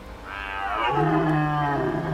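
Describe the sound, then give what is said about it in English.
A beast being hit with a broom lets out a loud, pained yelp as it retracts its head, stretching into a strained, tonal wail, its pitch sliding downward over about two seconds, with no voices around it. “The beast yelped as it retracted its head.”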